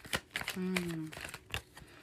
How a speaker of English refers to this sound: Okay, make a wish while I'm shuffling cards and things.